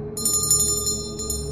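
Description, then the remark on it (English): A sharp, bright ringing of a bell, with steady high metallic tones sustained over a low hum, pulsing slightly as it rings on without pause. No voices. “It was gauntly dressed in a dingy wrapping cloth, and just as I lifted the fabric for a look, a bell rang sharply.”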